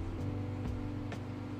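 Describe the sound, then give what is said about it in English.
A new black Dodge Challenger with black tinted windows rumbles past with a steady, low engine and road drone, held at an even loudness, with a few faint clicks over the top and no voices. “It was a Dodge Challenger coming over here.”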